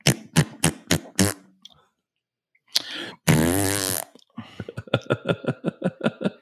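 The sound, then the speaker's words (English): Someone makes fart noises with their mouth: a run of quick sputtering pops, a pause, a long buzzy drawn-out blast, then another rapid string of sputters, loud and alone. “It's kind of fun making that noise.”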